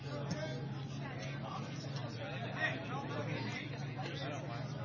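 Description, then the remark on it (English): A baseball crowd murmurs and chatters in a steady, moderately loud hubbub, swelling briefly midway as it reacts when a low one-out pitch to Jake Stahl in the fifth gets by Spidell all the way to the backstop, over a constant low hum. “And you can hear the crowd, Mike, jiggling after the ball probably came pretty close to hitting it.”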